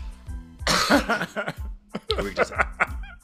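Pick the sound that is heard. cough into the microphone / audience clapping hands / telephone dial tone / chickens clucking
cough into the microphone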